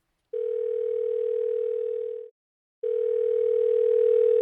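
Telephone ringback tone of an outgoing call placed to record a conversation with a currently incarcerated man: two long, steady electronic tones, each about two seconds, separated by a short silent pause. Clear and fairly loud, with no voices.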